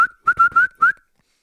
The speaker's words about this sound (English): And so guy starts entering the woods there, and I whistle at him, right?